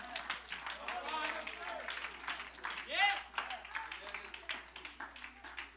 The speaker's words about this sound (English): Praise God. I don't want to stop you clapping. I don't want you to stop you shouting, helping me preach.